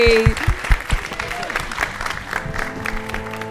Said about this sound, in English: Thank you so much. You've been such a wonderful audience. Please give a huge round of applause to your amazing guests, Ola Labi, Brona C. Titley, and Dan Schreiber, everybody.